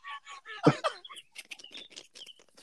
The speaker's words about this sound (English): Who's outside, man? Shut those birds up. I am. It's nice out, man.